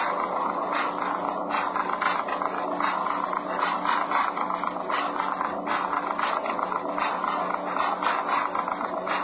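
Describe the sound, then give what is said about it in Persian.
A signature-forging machine holding a pen writes a signature: a steady mechanical whir and buzz runs throughout, with rapid, regular ticking or ratcheting clicks layered over it as the machine works continuously at an even volume. “بعد ببین دستگاه جعل امضاست میان امضای شما رو از روش ور میدارن بعد این دستگاهه براشون امضا میکنه ببین نگاه کنید فقط یه خودکار میذارن اینجا این امضای شما رو میکنه.”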